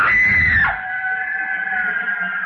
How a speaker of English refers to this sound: The girl, screaming with rage, turned on him and buried her nails in his face, using the most frightful words that ever fell from the off-scouring of a guardhouse.